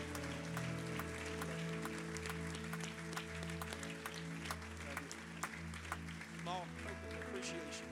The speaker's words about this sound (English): We're so thankful for you both. And would you clap your hands of appreciation?